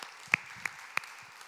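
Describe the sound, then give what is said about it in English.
Three sharp, evenly spaced hand claps at a church service marking the church's one-year anniversary ring out over a faint, steady background hiss, with no talking in between. “I got to clap for that.”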